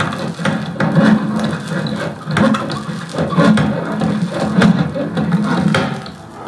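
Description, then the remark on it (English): Busy manual construction work from the 1960s with no mechanical equipment: a steady, dense clatter of wooden knocks, scrapes and thuds from hand tools, with sharper strikes every second or so and a constant low rumble underneath. “So the construction noises from the 1960s. No mechanical stuff.”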